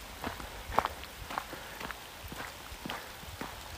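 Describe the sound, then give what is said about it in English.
Steady footsteps crunch along at an even walking pace over a soft, continuous hiss of light rain falling outdoors, on a walk beside a field heading back home, with few people around; no one speaks. “There's not many people around, probably because it is just raining.”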